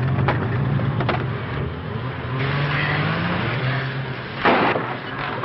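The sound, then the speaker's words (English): A door is busted open as a man bursts out through it, crashing with a brief, sharp burst of splintering wood near the end, over a steady low engine-like rumble, with a couple of fainter cracks earlier. “just busted out of the door.”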